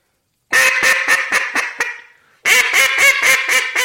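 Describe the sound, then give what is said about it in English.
A duck call blown in a descending cadence: a rapid run of loud quacks whose notes get shorter as they come down and taper off, then after a short pause a second burst of quick, evenly spaced quacks, with no talking. “So that's, you're putting more ducks in the bottom. Okay. Which will be more real sounding.”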